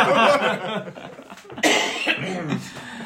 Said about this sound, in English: You came into this podcast before saying, lads, I've got a cold and a cough, and that is the first time you've coughed in the last 3 hours. Thank you. I've been holding it in. Asthma's flaring up